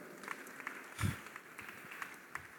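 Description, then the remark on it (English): Scattered hand claps from a crowd asked by a preacher to put their hands together, reverberant, with one stronger burst near the middle and irregular, sparse claps around it, fairly quiet overall. “Is this the way you clap, or you know, like you are joking, or do something like you are joking?”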